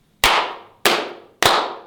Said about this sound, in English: But nevertheless, rest in heaven. Yeah. Or wherever you went, young …. Can we slow clap the brother out?